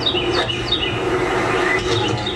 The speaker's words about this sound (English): Earlier on a Sunday, but they're trying to talk, and all I can hear is this bird. I'm just like, I don't even know what you're saying. This annoying bird just won't shut up.